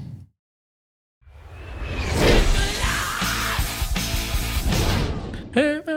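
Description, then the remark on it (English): A brief burst of loud rock music erupts after a moment of silence, with distorted guitar and a singer's shouted vocal, cutting off abruptly near the end; a stream alert played when a viewer redeems a change of the room's light colors. “If you do change the lights as a redeemable, you get to hear this sound.”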